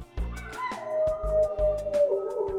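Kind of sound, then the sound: animal, wolves howling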